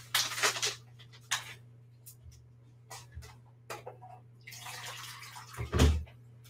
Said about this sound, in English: so I'm going to do 4 tablespoons flax seed. And then 12 tablespoons of water.